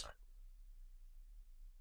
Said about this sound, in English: And my cat hopped up.